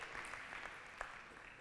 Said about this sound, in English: Want to cheer for our kids?